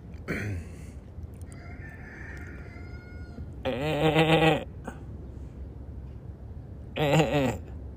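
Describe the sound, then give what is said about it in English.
A goat bleats twice, first a long wavering cry and then a shorter one a few seconds later, fairly loud over quiet outdoor background noise. “There's a goat.”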